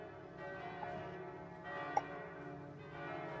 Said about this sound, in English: They pick up Farius over their head like a wrestler and throw him into the bell, and it goes bong.